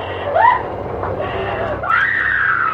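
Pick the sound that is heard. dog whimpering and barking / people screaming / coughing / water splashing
people screaming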